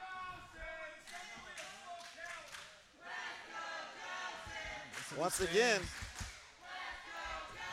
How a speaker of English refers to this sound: Once again, you hear the crowd.